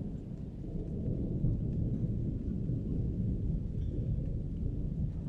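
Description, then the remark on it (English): Steady, heavy rain that is starting to flood pours down in a continuous low, rumbling wash that holds constant for several seconds, with no voices and no breaks in the sound. “watching the rain fall for a moment”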